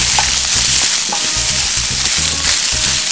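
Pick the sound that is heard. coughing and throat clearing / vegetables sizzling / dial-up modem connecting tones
vegetables sizzling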